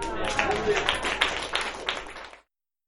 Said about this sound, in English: Now, how can I best that sound of applause for the inimitable Roy Blackman? I don't think I can.